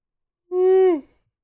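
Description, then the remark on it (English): A person yawns once: a short, steady voiced tone that sags downward in pitch and fades out, with silence around it and no talking. “Made myself yawn again.”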